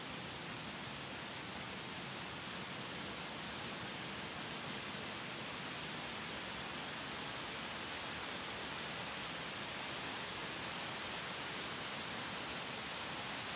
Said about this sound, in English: Like right now it's raining. I stopped talking because I want you to hear it. It's picking up. Speaking of which, I'm gonna drink a little coffee for the ladies out there. I fucking love the rain.